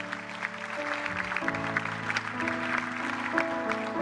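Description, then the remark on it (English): A crowd claps steadily over sustained keyboard or organ chords that shift pitch a few times, the dense patter of applause running throughout at a moderate level. “Go ahead and clap for them again.”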